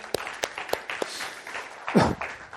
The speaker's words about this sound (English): And so praise God for the 80 people that took baptism 16 days ago in Germany, right? Can you all clap to Jesus for that?